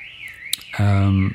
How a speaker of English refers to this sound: Sorry, we're should we wait for that? By this awful car alarm. That's gone.